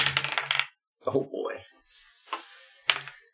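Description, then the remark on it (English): Dice clatter and tumble across a hard tabletop in a few quick bursts of rattling clicks, fairly loud, with a brief murmur of voices in between, as players make a luck roll. “Roll a luck roll. We're gonna roll for swoon.”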